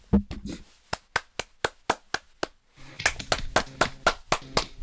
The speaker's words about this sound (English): Okay, that's enough clapping.